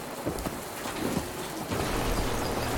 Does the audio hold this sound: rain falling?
yes